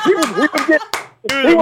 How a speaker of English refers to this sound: I gave my man an applause because he went longer than 3 minutes.